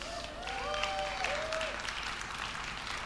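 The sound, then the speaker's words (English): A crowd claps for a doorman in a dense, continuous wash of applause, moderately loud and sustained for a few seconds, with a brief high whistle-like tone gliding through near the start. “Round of applause for the doorman.”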